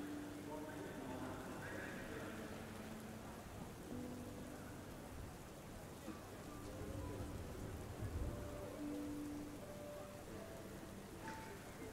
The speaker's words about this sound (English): Your mind wanders off within the sound of the rain, into quietness, knowing that the day is almost over.